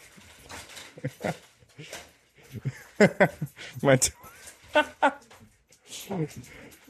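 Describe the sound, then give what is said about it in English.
A dog whimpers and lets out short, agitated barks in uneven bursts, with high-pitched whines cutting through between the louder yelps. “My dog is freaking out right now.”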